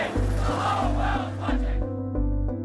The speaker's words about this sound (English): The crowd were chanting, we want rugby, we want rugby.